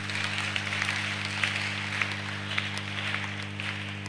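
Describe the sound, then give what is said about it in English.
An audience applauds in a steady, dense wash of clapping that lasts throughout, with scattered sharper claps standing out over a low constant hum. “Let's clap for them one more time.”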